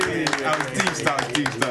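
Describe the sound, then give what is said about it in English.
A short burst of scattered hand clapping, sharp uneven claps at a moderate level, with people talking and murmuring underneath throughout. “Free smoke, Can I get your round of applause?”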